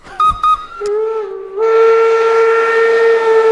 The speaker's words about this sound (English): Whoa. Are we talking train specs here? Let's toot it.